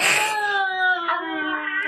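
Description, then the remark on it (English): A single drawn-out cat yowl, loud, holding a strained, wavering pitch that sags slightly toward the end, with no talking. “And if you do not clean your couch and or other furnitures within the time allotted, you will be stabbed with a rapier and or mauled by a cat.”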